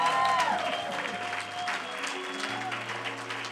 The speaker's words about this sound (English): If you love your pastor and your pastor's wife, you ought to give them a big hand clap today.